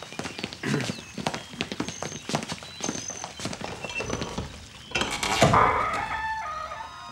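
Horse hooves clip-clop in a steady run of sharp, hollow knocks, then give way to a louder noisy burst with high animal calls at the end.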